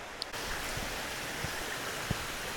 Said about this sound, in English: Yeah, there is a tiny stream, a little tiny waterfall. Very relaxing. This one's much easier to cross.